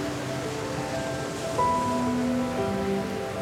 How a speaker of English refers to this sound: But with a wicked grin, I walked into those winter waves, and they tossed me around like a piece of sand.